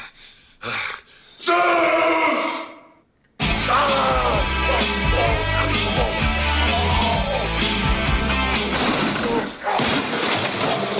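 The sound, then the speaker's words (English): Harsh, guttural monster growls rasp out in short bursts in a film scene where it tears a gym apart, then a long rough snarl before a sudden gap. After that, loud, dense, pounding noise takes over, with more throaty roaring churning through it. “So what do you hear all the growling?”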